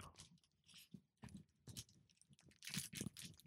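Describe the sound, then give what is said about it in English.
Crunchy biting and wet chewing on hard, powdery chocolate cold from the fridge, a run of irregular crackly bursts with louder crunches toward the end, no talking over it. “Oh, your cheeky little chocolate. Oh, yeah. Feels nice in my mouth.”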